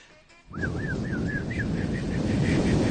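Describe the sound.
A man voices a dinosaur impression: a sudden, loud, sustained breathy rush of air with a thin warbling whistle riding on top, lasting about two and a half seconds.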